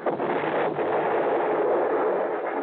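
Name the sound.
car exploding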